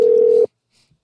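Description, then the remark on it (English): A steady telephone dial tone hums loudly for about half a second as someone tries to call a person again, then cuts off abruptly into near silence; no keypad beeps follow. “I'm going to try to call her again.”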